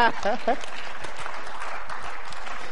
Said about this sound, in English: If I were you, I would clap your hand.